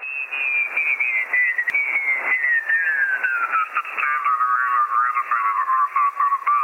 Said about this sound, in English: If your radio is set for upper sideband and you're below the signal you want at a lower frequency than that signal, the voice will sound quacky or squawky, like this.